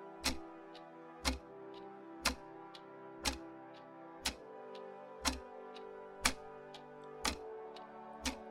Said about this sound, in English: Tick, says the clock. Life ends one day, tick-tock.